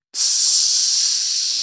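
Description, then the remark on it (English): A steady, high-pitched hiss of a coolant leak aboard a starship starts abruptly and continues loud and unbroken, like pressurized gas escaping, with no voices. “And he looks over and there's a coolant leak.”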